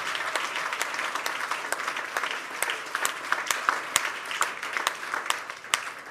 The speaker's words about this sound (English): Give Jesus a big clap of praise.